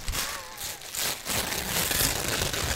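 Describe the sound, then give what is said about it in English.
Tearing and crinkling of tissue paper, a steady run of papery rips with brief pauses, fairly loud and dry, with no voices. “My favorite sound is tissue paper ripping.”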